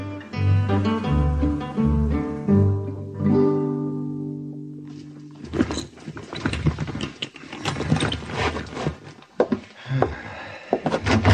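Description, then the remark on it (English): A door is opened at the Carlton Hotel, San Francisco, 1875, in the radio drama Have Gun, Will Travel: a musical passage fades, then rattling, clicking latch-like noises follow in an irregular sequence, with no voices. “I was going to knock on your door, and all of a sudden, you come out.”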